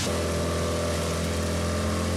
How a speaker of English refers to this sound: Well, this is it. We're in the little inflatable Zodiac heading out to the big boat, which sits anchored about 300 or 400 metres out off the beach behind the surf break. Pretty lucky this morning because there's not much in the way of swell.